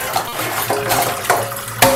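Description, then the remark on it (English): Tap water runs steadily into a really big metal pot set in a kitchen sink, being filled to cook chicken breasts, a continuous rushing hiss with a ringing hollow tone. A few clanks and knocks sound from the pot as it fills. “So the thing here to do is to first of all fill the pot with water.”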